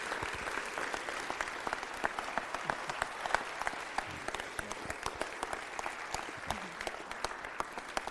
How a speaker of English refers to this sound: Let's just give them one round of applause. Love you guys.